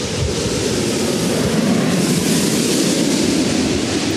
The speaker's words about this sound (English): But I hear a plane. Oh. KLM.